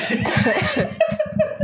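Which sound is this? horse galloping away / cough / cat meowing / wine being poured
cough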